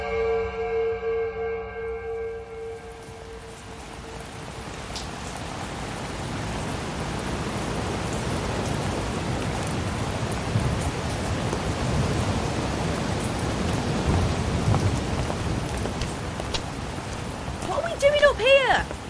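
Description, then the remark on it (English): Heavy rain pours down in a dense, steady hiss that swells up after a brief humming tone at the start, staying loud throughout, with a short vocal sound near the end. “I can't see anything. The rain's blinding me.”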